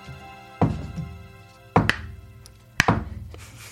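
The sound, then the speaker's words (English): Three slow, hollow knocks of a coaster, made as a Foley sound effect for a soft, slow knock on a bedroom door, each a sharp thunk with a short ringing decay, spaced about a second apart with no talking. “You knocked a coaster.”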